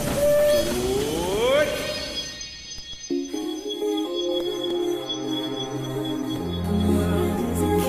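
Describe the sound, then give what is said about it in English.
A Disneyland Railroad train pulls away from the station at Disneyland: a loud whistle slides upward in pitch and cuts off, then a steady low mechanical rumble and hiss build as the engine gets moving. “The Disneyland Limited, now leaving for a grand circle tour of the Magic Kingdom.”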